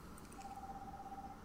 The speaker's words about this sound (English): It's my phone. I'm sorry. It was charging.